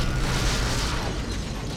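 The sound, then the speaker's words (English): A dense, continuous run of small mechanical blasts and crackling pops, loud, with a grinding metallic rattle underneath and no pauses, as tiny explosions tear apart a skull spider creature after energy pours into its reactor engine. “The skull spider flailed as tiny explosions tore it apart.”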